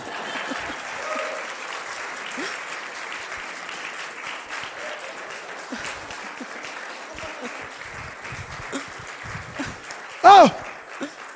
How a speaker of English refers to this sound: Dale un aplauso a la traductora que está fuera de serie. Give an applause to the translators.